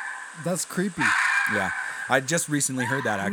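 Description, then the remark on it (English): A red fox's call, a raspy, high-pitched scream drawn out in the background, mostly masked by people talking over it for the whole stretch. “This is the sound of a red fox.”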